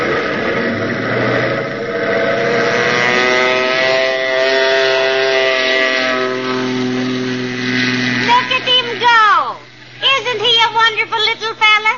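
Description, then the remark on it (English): A small government plane's engine drones steadily and loudly, its buzzing pitch climbing slowly as it revs for takeoff, then people begin talking excitedly over the fading hum. “Did you see that takeoff?”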